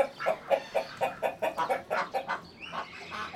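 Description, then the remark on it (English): Chickens cluck in a quick run of short, rhythmic bursts, followed by a longer drawn-out call near the end. Moderately loud, with no voices. “We collected rainwater in the sculpture that was in Parque Central, and then we had some butterflies and some chickens that were actually donated to the project soon after it opens.”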